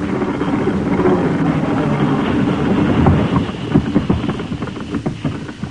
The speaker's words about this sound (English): Here comes the engine now. Here goes the lever.